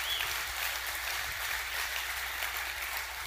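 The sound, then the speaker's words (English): An audience applauds, many hands clapping together into a dense, steady wash of bright patter that holds at an even level for a few seconds, with no voices heard. “I think you can clap for that.”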